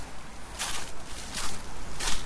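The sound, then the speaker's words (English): Three soft, crisp crunches of footsteps on frosty leaves on a morning walk by a river, spaced at a slow, even walking pace, with a low steady rumble underneath and no voices. “Of course, you can probably just hear the crisp underfoot of the leaves, which are quite frosty this morning”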